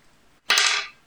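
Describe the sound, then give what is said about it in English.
A d20 die, rolled in a tabletop role-playing game to cast Detect Magic, clatters onto a table in one sharp, bright burst of rattling noise that fades out within half a second, with no voices around it. “Can I use Detect Magic again? Sure. Roll me a d20.”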